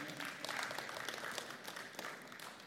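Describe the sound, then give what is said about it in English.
An audience applauds in a steady wash of many hands clapping at once, sustained and even for a few seconds, without voices standing out above it. “Yeah, well, you can clap for that.”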